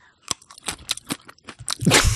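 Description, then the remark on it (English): Someone imitates a panda crunching bamboo with their mouth: a quick run of sharp, crackly crunches building into a louder, sustained noisy crunch at the end, alone. “So it's a panda making its panda noise. Aw, what does a panda even do? It's just crunches. It's bamboo. It's a bamboo crunch.”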